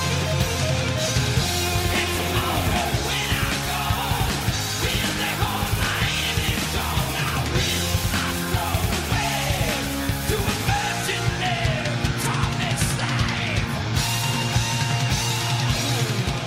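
Loud, dense heavy metal plays throughout, with distorted guitars, pounding drums and a driving bass line, while a raw, shouted vocal rides over the wall of sound at a constant high volume.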